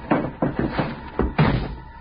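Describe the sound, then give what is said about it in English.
A car's rear door is shut with a heavy, muffled slam, followed by a few more dull thumps and knocks, like doors and bags being handled. “Slammed the door shut.”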